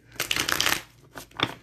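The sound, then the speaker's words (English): A deck of cards being shuffled: a dense, crackling riffle lasting about half a second, followed by a couple of softer, quicker flicks of the cards. “So let me shuffle.”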